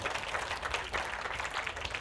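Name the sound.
children clapping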